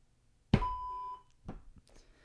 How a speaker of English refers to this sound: The bleep was late. Sorry. It was a late bleep.